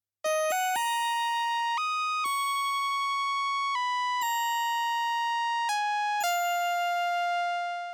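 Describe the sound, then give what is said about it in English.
Bright synth bells play a slow melody of about nine struck notes, each with a crisp attack and a long ringing sustain, stepping up and down in pitch with no other instruments. “When combined with the lead synth, listen to how these bells add elegance and class to the part.”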